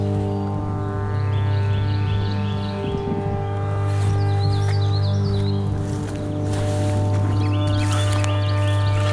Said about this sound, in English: It's true. There's so many birds out right now.